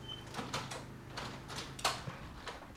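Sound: door being shut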